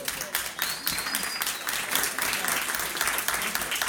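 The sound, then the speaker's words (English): Audience applause fills the whole stretch, a dense, steady patter of many hands clapping at an even loudness, with a faint high whistle cutting through early on. “All right, thanks give for that round of applause.”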